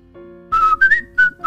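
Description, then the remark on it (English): A corrections officer whistles a short, bright tune while walking down a hallway swinging his keys in one hand: a few sustained notes that glide and shift in pitch, with brief gaps between phrases and no talking. “And not a moment later, the corrections officer comes waltzing down the hallway, swinging his keys in one hand and whistling.”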